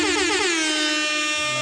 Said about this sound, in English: Air horns for Michael B.